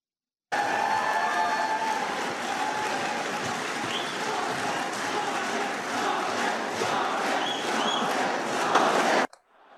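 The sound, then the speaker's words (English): A large, rowdy crowd at a political debate shouts and yells continuously, a dense roar of many voices at a steady high level with occasional louder whoops and whistles, no single speaker standing out. “But do we have a clip of the crowd from the debate?”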